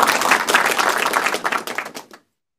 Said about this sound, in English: Thank you. That was the applause sound.